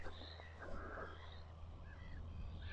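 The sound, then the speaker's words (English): Seagulls call repeatedly in a chorus of harsh, wailing cries, several overlapping over a steady low hum. “Because that's how seagulls sound.”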